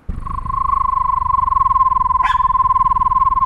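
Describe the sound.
A voice imitates a screech owl's call: a steady, mid-pitched trill of rapid, even pulses held for about three seconds, broken briefly by a sharp click partway through.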